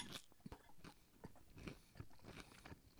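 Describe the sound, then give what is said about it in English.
Loud crunching as someone chews a mouthful of salad, with repeated crisp bites and crackles in a steady chewing rhythm, no voices. “It all sounds like a fucking salad. Lots of crunch.”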